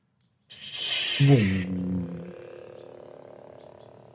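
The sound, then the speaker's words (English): A metal toy lightsaber, custom-built at Star Wars at Disneyland, ignites with a bright electronic whoosh and a descending buzzy tone, then settles into a steady low hum that carries on alone at moderate volume. “It's a lightsaber.”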